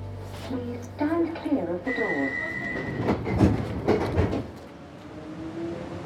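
A train rumbles along the rails with a steady low roar, a sustained whining tone and a few sharp clanks and thumps, easing off toward the end.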